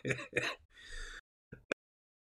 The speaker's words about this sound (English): Here's my coughing again.